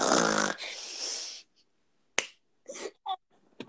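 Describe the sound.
A voice imitates a man's snoring, that of the speaker's stepdad, with one long, loud, rasping snort, followed by a sharp click and a few brief throaty vocal sounds.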